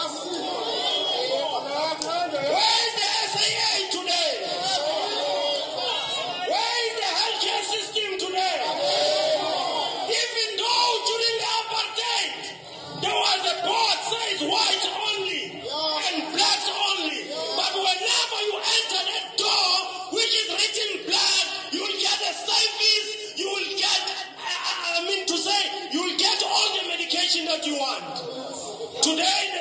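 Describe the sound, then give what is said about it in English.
A large crowd shouts and cheers continuously, a dense wall of overlapping voices with yells rising out of the roar, loud and sustained throughout with no distinct single speaker. “Look at that crowd.”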